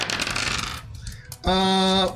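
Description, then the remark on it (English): Dice rolled on a table clatter and rattle for under a second, then after a short pause a loud, steady ringing tone sounds until the end. “So here's my roll for that.”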